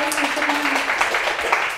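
An audience applauds, a dense, steady wash of many hands clapping at an even loudness for the whole couple of seconds, with no clear voices over it.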